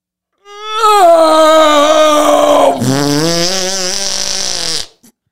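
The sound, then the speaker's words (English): A voice imitates a long, dying fart: a single sustained, buzzy tone that wavers, drops lower partway through, and then cuts off abruptly after about four seconds, loud with no talking. “So this is when a fart is near death and being burned alive.”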